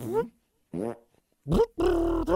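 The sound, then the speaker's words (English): Several loud fart blasts in quick succession, each a buzzy, pitched rasp that wavers in tone, with short gaps between and a longer, sustained one near the end. “Wow, that was pretty impressive from your ass.”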